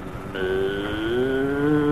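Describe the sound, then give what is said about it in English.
A cow lets out one long, loud moo after a brief moment of low noise, holding a steady droning tone that bends upward in pitch partway through and continues to the end. “Haven't you ever seen a cow before?”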